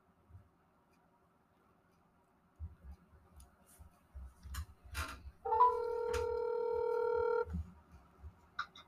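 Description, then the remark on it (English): Telephone dialing tones as a call is placed: a flurry of soft clicks and taps, then a steady, loud electronic tone held for about two seconds before cutting off. No one speaks. “So let's go ahead and get our guest on the phone here.”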